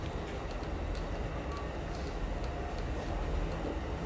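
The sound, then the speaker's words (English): A train rolls steadily along the rails, its deep rumble continuous, with faint rhythmic clicks of the wheels and no voices. “So what made you decide to take the train?”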